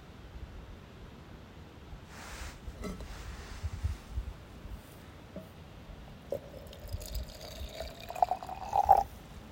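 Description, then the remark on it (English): Soft, steady rush of a river spilling over a small man-made waterfall into a bigger river, thought to be the Hudson River, with a few brief knocks and a faint thin whistle near the end. “So there's like a little man-made waterfall with a river that leads down to this bigger river.”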